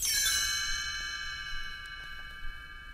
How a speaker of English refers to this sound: You will notice time to turn the page when you hear the chimes ring like this.